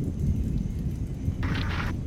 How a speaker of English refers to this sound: Static. And some noise. That's more than likely generated in the Reactor program.